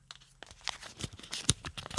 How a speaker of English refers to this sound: I've taken it out. I am unfolding the paper.